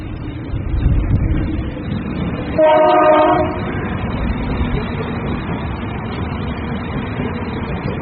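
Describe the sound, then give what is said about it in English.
A train bound for Galway, Ireland, rumbles steadily across a railway bridge, a loud continuous roll of wheels on track, with a single horn blast sounding for about a second partway through. No one speaks. “the first train came over that bridge to go to Galway. That's going to Galway now.”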